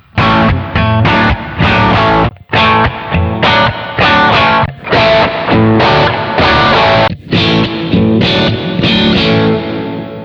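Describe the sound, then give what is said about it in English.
Distorted electric guitar, a Strat played through a GT100 multi-effects unit, plays a chunky, crunchy riff in four short passages separated by brief pauses, each with a slightly different gritty crunch amp tone, loud with no voices. “Here are 4 crunch tones.”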